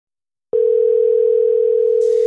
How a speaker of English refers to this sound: Let's see if Blake will answer the phone. What do you think? Let's go.